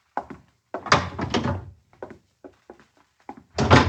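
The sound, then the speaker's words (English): A door being opened: a series of wooden clunks and rattling knocks from the latch and hinges, ending with a louder thump as it swings. “John, open the door! I'm heavy with melons and cannot reach!”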